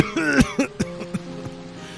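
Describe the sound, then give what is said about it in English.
A voiced, throaty cough opens with a strained vocal sound, followed by several shorter, softer coughs and throat-clearing bursts spaced irregularly, with no talking. “Oh, goodness, they've got the cough so delicate and really took the time to write the word cough.”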